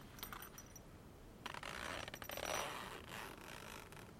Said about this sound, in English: Here's a zipper sound.